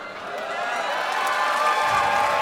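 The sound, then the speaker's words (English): An audience applauds Lewis Carroll, a dense wash of clapping that holds at a fairly loud, even level throughout, with a faint hint of crowd cheering mixed in. “Lewis Carroll receiving the applause in the time-honored way.”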